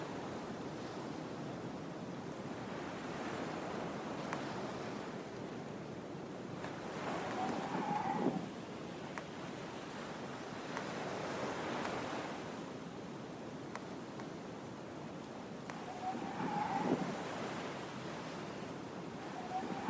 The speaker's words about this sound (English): It's sometime later, and you have not made the far shore. The wind is strong and against you. It's a struggle.